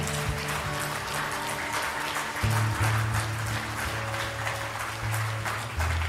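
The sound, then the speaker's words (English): An audience claps their hands in praise to God during a morning church service, a steady crackling roar of many hands lasting several seconds, with sustained low organ-like chords humming underneath. “Can we give God a hand clap of praise this morning?”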